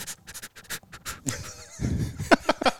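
A dog pants right up close to the microphone in quick, rhythmic breathy bursts, with a brief whiny, squeaky vocal sound in the middle before the rapid panting resumes.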